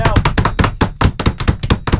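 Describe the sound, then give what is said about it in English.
Hands thump on a table in a rapid, uneven flurry of about a dozen loud, dull knocks over two seconds, each hit landing with a heavy low thud. “Let's give him a table thump.”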